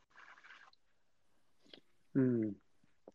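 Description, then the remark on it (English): A breathy slurping sip of noodle soup with leeks and small noodle balls, followed by faint wet mouth clicks and chewing, then a brief loud hummed vocal sound. “We're going to go for the sip and then give a review.”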